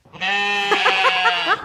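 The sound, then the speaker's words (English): A child's voice imitates a sheep, giving one sustained, wavering bleat of under two seconds, fairly loud, with no other sounds around it. “What noise does the sheep make?”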